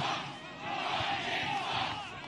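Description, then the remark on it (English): A large rally crowd somewhere in Ohio cheers and roars steadily, a dense wash of many voices shouting together with no pauses, loud and sustained for a couple of seconds. “What a crowd.”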